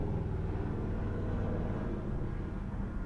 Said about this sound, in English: Sounds like there's a helicopter. My apologies.